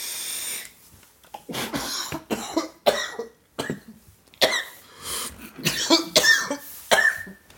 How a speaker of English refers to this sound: I mean, you're coughing because you know it's funny. It is funny.